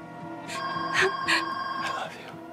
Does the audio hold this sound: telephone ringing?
yes